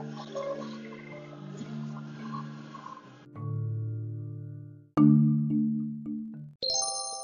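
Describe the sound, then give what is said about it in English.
A sponsorship bell introducing a Raycon Earbuds ad segment: a sequence of bright electronic chime tones rings out clearly, several sustained bell-like notes stepping through a short melodic jingle, loud with no talking. “Right, it's our sponsorship bell.”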